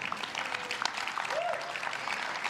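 A church audience claps their hands during a sermon in a steady, dense wash of applause that holds at an even, moderate level for a few seconds, with no voices standing out.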